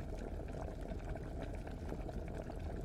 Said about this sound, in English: And the pasta was pouring out of the pot all over the floor of Strega Nona's house. And it was coming out the door. Big Anthony rushed in and shouted the magic words again. But the pot kept on boiling.